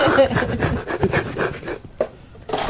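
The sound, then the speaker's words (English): Monsters clawing at a door in Savage Rift: rough, rapid scratching and scraping on wood, a dense run of harsh strokes that drops away briefly before another loud burst starts up. “My god, I can hear monsters clawing at the door.”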